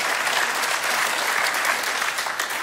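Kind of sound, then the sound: crowd, church audience applause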